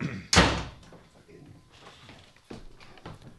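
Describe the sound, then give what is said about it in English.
A door slams shut once, loud, with a sharp booming impact that quickly fades into quieter rustling and muffled background sounds. “That's why we gotta keep that door shut.”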